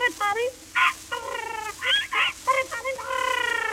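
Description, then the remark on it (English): A parrot squawks and chatters in a rapid string of harsh, scratchy calls, about a dozen short bursts ending in a longer wavering screech, with no talking. “And a pal parrot for the little boy who lives in the garret.”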